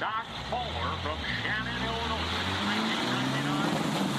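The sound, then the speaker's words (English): A W900L semi truck rated at 1,800 horsepower roars down a quarter-mile drag strip at a racetrack, racing against pickup trucks, its engine pitch climbing steadily as it accelerates. The loud, continuous rumble is dominant, with muffled voices faintly underneath. “She took her rig to the racetrack and showed it off against some regular pickup trucks.”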